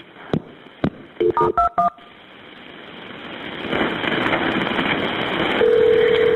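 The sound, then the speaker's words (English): A couple of clicks, then a quick run of beeping keypad dial tones as a telephone call is transferred to Acadian, followed by a rushing line hiss and a steady low ringback-style tone at the end. “I'm going to transfer you to Acadian. It's going to think I'm hanging up, but I'm not.”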